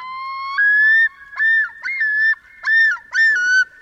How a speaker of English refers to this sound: One of the most evocative bird voices belongs not to a delicate songbird, but to a sleek, black-and-white water bird. That's the haunting yodel of a male common loon, a sound that echoes across northern lakes where loons nest in summer.